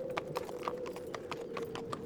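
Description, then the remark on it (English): Hooves of a horse pulling a carriage clip-clop in a steady, brisk rhythm, about ten sharp knocks over a constant rumbling wheel noise as the carriage jolts forward, its wheels sliding on ice-slicked earth, with no voices. “Kev shakes the reins and the carriage jolts forward, the wheels sliding on the ice-slicked earth.”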